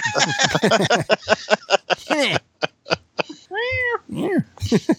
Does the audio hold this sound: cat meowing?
yes